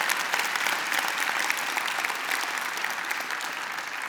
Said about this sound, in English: And gosh, I hope you're clapping, not because you feel like you have to, because you agree.